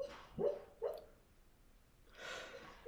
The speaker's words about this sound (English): Sorry, can you hear Luna in the background? She's dreaming. And she's like barking in her sleep. I can hear it like a little bit.